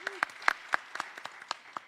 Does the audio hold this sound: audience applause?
yes